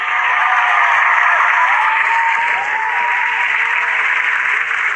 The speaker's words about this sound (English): Thank you for your family support. Thank you. Clap with me.